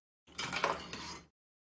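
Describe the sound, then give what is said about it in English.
A butterfly knife being flipped: a quick burst of rattling metallic clicks and clinks lasting about a second, with no voices. “those fucking butterfly knives, I can hear them.”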